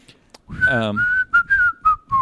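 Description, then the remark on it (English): A short whistled tune in a song, several clear, sustained notes that glide slightly downward, with brief pauses between phrases, fairly loud with faint background noise underneath. “That's an example of whistling.”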